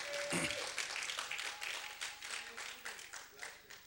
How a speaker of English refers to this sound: Clap for your church mother.